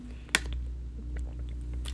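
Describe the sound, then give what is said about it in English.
Someone takes a drink of water: a sharp wet click, then soft gulping and swallowing noises, with a final moist smack, all over a low steady hum and no talking. “Sorry, I just had to take a drink of water.”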